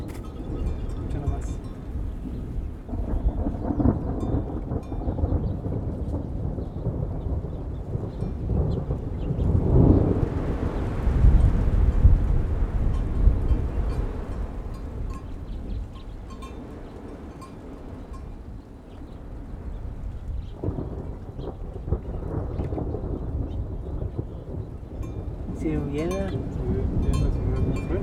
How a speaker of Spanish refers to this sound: ¿Y ella no le tiene miedo a la lluvia?